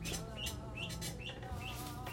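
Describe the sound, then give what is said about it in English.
Ducks that have no water calling in a steady stream of high, chirpy peeps, repeating every half second or so over a constant low hum, with no one talking. “Dude, the ducks don't have water.”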